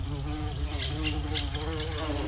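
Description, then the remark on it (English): A bumblebee buzzes steadily as it flies around, a continuous low drone with a rich harmonic hum that wavers slightly in pitch as it moves. “So first, the bumblebee is just flying around.”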